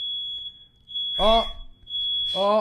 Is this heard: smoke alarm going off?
yes